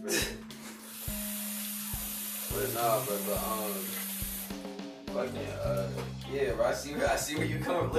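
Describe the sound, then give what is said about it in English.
Water runs steadily from a tap as dishes are washed, a continuous hiss lasting several seconds before cutting off, with voices talking over and after it. “I can do that, but matter of fact, I'm gonna do this right now.”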